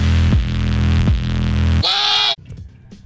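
A loud, throbbing pop beat with heavy bass pulses gives way to a harsh, bleating goat mating cry layered over the music in a mashup, then the track drops to a quieter rumbling tail.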